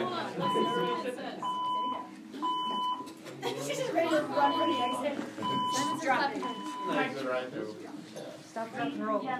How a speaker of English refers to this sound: Yeah, it's a fire alarm. That is an actual fire alarm.